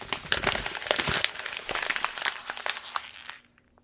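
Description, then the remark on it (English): Paper rattling and crinkling in a dense, continuous burst of sharp crackles for about three seconds, then stopping abruptly into near silence. No voices. “The Erotic Effect of Rattling Papers in Your Ears.”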